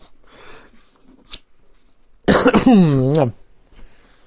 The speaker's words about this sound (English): That seems like a good spot for another break, because I need to wet my mouth and give a cough, you know.